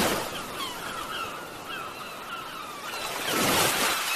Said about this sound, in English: Spend time on our white sandy beaches and just listen to waves crashing.